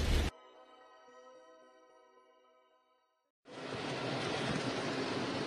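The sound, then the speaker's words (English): A loud, steady roar of heavy pouring rain in a storm fills the last two seconds, following a brief burst of noise and a sustained droning, humming tone. No one speaks. “Yeah, I'm sure you can hear my background is pouring and storming and all that.”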